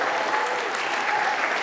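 An audience claps steadily in a dense, continuous burst of applause, many hands overlapping into an even crackling wash with no pauses for the whole moment.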